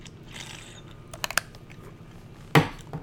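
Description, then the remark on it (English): Someone taking a drink of water: a few quick small clicks, then a single louder, brief gulping burst near the end over a low steady hum, with no talking. “I just need to take a drink of water.”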